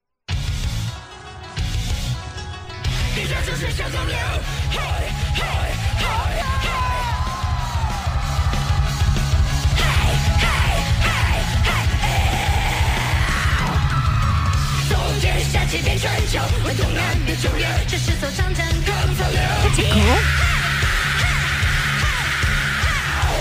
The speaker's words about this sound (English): This went down last month, and one of them brought the house down with her heavy metal death growl and scream. I just discovered it. I wanted to share it with you today. It's Sing China. This is a heavy metal death growl and scream.